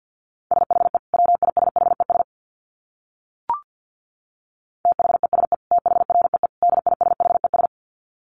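Fast Morse code at 50 words per minute in a single steady mid-pitched tone, keyed in rapid dits and dahs. Two bursts of sending are split by a pause broken by one sharp click.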